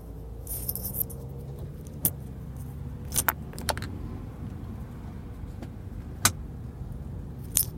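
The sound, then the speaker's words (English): A sparkling water bottle being opened to take a sip: a brief fizzy hiss, then several sharp, isolated clicks and snaps spread over a few seconds above a steady low rumble, with no talking. “Hold on, I'm going to take a sip of my bubble water. Hopefully you can hear that pop.”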